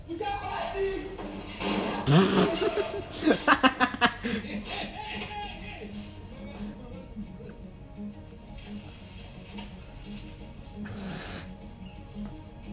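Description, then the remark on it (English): Several film characters cough in harsh, rough bursts because of the water, with a cluster of quick rhythmic hacks in the middle, followed by quieter background voices and murmuring. “Why are they coughing?”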